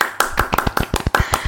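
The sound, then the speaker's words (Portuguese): A short burst of applause welcoming a newly introduced guest: a quick series of sharp hand claps, about a dozen in a second and a half, slightly uneven in rhythm, with no voices. “Cadê palmas, editor?”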